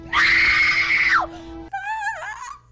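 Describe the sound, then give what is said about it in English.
A woman's loud, sustained horror-movie scream, shrill and piercing for about a second before cutting off, followed by a brief wavering high-pitched cry. “… gives us a wonderful horror movie scream.”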